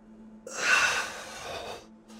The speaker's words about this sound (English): I asked with a deep yawn and stretched my arms outward before sliding back into my seat.